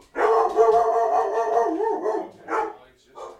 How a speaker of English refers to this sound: Bark, bark, bark, bark, bark.